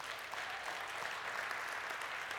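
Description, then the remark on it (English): An audience applauds the Lord steadily, a dense wash of many hands clapping at once with no pauses, fairly loud and sustained throughout, with no speech over it. “Give the Lord a hand clap right now.”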